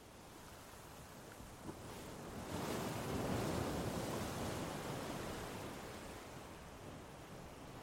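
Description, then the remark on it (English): Ocean waves wash onto the shore in a steady roar, one breaker swelling louder around the middle before slowly receding into continuous surf hiss. No voices. “They readied the boat and pushed it toward the waves.”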